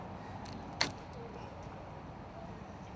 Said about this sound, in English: That's one tie wrap. Gonna get the other one in here, put that on as well, just to give it a little bit more secure mount over here to the front of the car. And we'll go from there. So here we go with the second one.